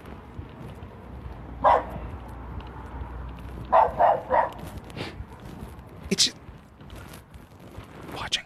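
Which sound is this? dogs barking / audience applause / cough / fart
dogs barking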